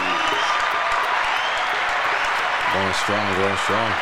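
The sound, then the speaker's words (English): Steady, dense clapping from a crowd, requested by a speaker celebrating seven years without beef suya or McDonald's, lasts throughout at an even loudness, with a few voices calling out over the applause toward the end. “Round of applause for me, please.”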